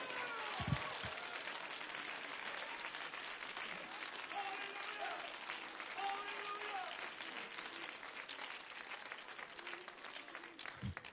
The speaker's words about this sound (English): come on, Pentecostals, thank God for the cross. Thank God for the cross. The cross. Clap your hands and shout for the cross.